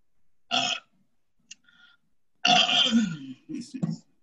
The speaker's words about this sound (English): She has the radio playing softly behind her, reads a fan magazine, and rolls an empty Pepsi bottle under her foot, picks up her Pepsi from the coffee table, and drowns it in one gulp, then belches loudly.